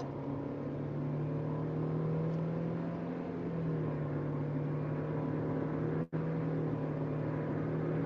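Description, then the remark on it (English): A car engine hums steadily and fairly loudly, as if heard from inside the vehicle, as the car accelerates to get in front of three cars in traffic, with a low droning tone and road noise and a brief dropout near the end. No one speaks. “Let me get in front of these 3 cars.”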